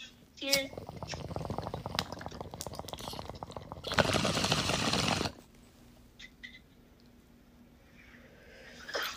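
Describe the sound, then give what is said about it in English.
Bong water bubbles in a rapid, steady gurgle for several seconds during a bong hit, ending in a short rushing burst of air before things go quiet. “Yay, bong rips together.”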